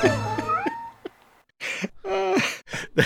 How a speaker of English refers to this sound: It's got some cats in it. Let me show you. Meow, meow, meow, meow. Oh my God, who let all these cats out of the bag?